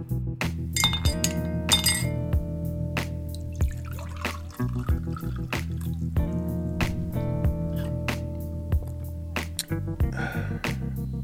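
Glasses clink together in a toast: a quick cluster of bright, ringing chinks near the start, then a few more scattered taps, all over a steady low musical hum with no talking.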